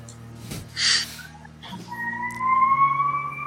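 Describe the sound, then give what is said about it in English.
A siren outside, beginning after a brief hissing burst as a steady, drawn-out tone that slowly climbs in pitch and grows a little louder, with a low hum underneath and no talking. “Yeah, didn't sound like a siren at first.”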